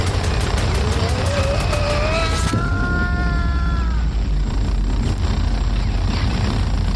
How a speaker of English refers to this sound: The hail of gunfire from the drones ending with a massive explosion.